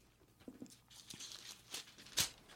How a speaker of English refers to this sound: It's more of my famous Foley work here. Can't turn a fucking page.